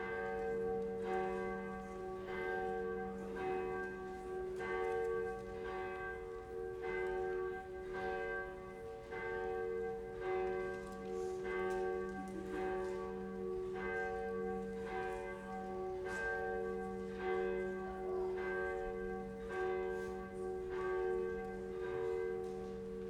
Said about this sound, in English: I'll wait for the bell.